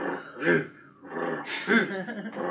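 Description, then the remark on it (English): A voice imitates rough, rasping snoring, like a saw cutting wood, in two or three gravelly drawn-out strokes that swell and fade, with loud peaks between quieter stretches. “You hear a soft snoring, which sounds more like, it literally sounds like a saw cutting wood.”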